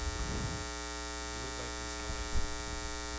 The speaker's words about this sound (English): White noise. Some white ass noise.